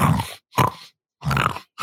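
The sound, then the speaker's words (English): A person imitates huge orc pigs looking for truffles with three short, guttural grunting snorts in a quick, uneven rhythm, fairly loud, with brief silences between them. “They're like muscled up bebop freaking pigs looking around for truffles right now, making just constant.”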